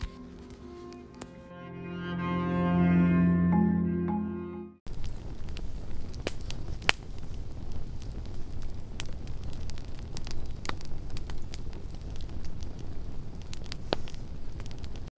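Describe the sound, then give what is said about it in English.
A campfire crackles steadily, with sharp pops and snaps scattered over a constant low rush of flames. A brief swell of tonal music comes just before the fire sounds begin. “Around this campfire, thank you for joining me in the camp of the beyond.”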